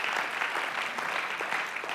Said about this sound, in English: Listen, absolutely, you clap.